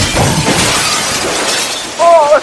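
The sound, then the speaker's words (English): A small amount of glass is broken, shattering with a bright, crackling crash and scattered tinkling bits, followed by a brief voice exclaiming near the end. “It sounded like someone breaking only a little glass.”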